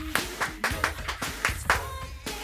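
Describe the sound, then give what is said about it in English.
One person clapping hands in a quick, steady run of about nine sharp, loud claps, with faint vocal sounds beneath them. “I'm gonna clap again because it feels really good.”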